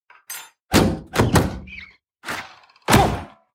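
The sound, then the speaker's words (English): In a Geico commercial, birds thud against the windows of a house with lots of windows: about five heavy, dull thumps at uneven intervals, some doubled, with a couple of fainter knocks at the start and no voices. “Lots of windows, great light. But the birds.”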